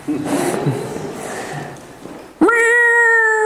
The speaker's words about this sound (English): Before you put your feet on the floor in the morning, something drives you to get out of bed. In my case, it's a very vocal cat.